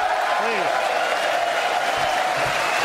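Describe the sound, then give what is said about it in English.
A crowd at the State of the Union applauds three D-Day veterans steadily and loudly throughout, a dense, unbroken wash of clapping with a faint voice or two briefly audible underneath. “Applaud them, everybody.”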